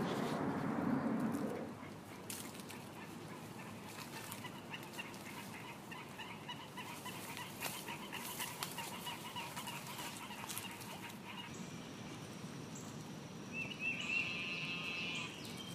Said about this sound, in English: The sound of the, I believe, the eastern narrowmouth toad. I'm not as good with frogs as I am with snakes, but finding the narrowmouths every once in a while.